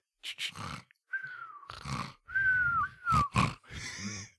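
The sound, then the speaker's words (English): A voice imitates a snoring pig, alternating rough snorts and grunts with thin, gliding whistles over several breaths. It is fairly loud, with no talking. “I'm a little piggy with a whistle when I sleep.”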